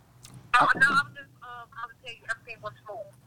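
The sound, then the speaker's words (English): A phone rings with an incoming call: a short burst of noise, then a melodic ringtone of stepped electronic tones playing for a couple of seconds, moderately loud. “Hold on, wait, Rick, you got a phone call, bro.”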